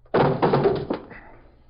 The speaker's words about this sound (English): Kick the door open.